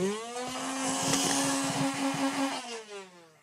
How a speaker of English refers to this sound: This is my Nerf rival. Where's the actual engine? This is what my Nerf rival sounds like.